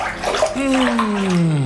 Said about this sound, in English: I'm just going to lean over the bath here and swish the oils before I step in.